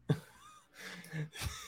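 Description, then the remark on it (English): A dog snoring softly: a few raspy, breathy snorts and wheezing inhales in an uneven rhythm, quiet, with no one talking. “Do you hear my dog snoring?”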